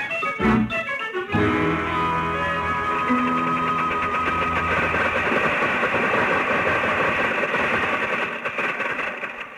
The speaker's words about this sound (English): Gosh, Mr. Colby, listen to that motor purr. Sounds like a new 47. Yeah, a new 47 concrete mixer. What kind of a car is this anyway?